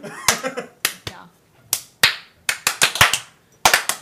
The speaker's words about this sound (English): We're all clapping for a different reason. Got it. You know, it actually works better when only one person does it, right? Well, yeah, but that's not nearly as fun, though.